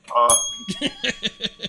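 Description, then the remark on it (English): A single bright bell ding rings out at the start, its clear tone lingering and slowly fading while a person begins talking over it. “You guys got that bell at the ready?”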